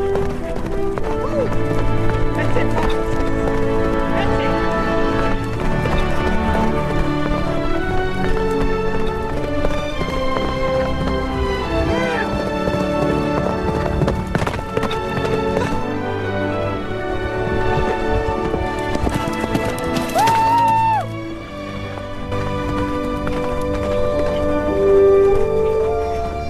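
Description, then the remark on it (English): Steady galloping hoofbeats of a ridden horse pound for the whole stretch under a dense, tonal backdrop. The horse's rising whinny cuts through about two-thirds of the way in. “So as you guys listen to that, obviously we're not horses, although I've been called similar, but we're not horses, right?”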